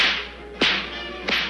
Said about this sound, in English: Quit cracking that whip! Oh, you make me so nervous! A lion tamer wouldn't be a lion tamer without cracking a whip.